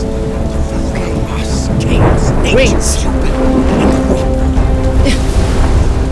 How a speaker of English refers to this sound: I don't think I can fly in this hailstorm.